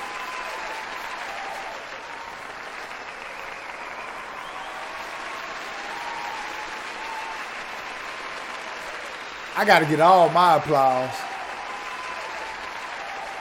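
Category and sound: crowd, applause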